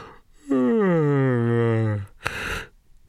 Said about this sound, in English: So just curious, how many of you out there just yawned or feel like yawning now?